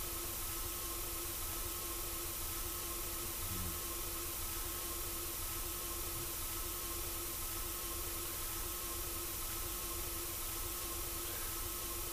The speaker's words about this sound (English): Subtly abrasive. Low humming, droning,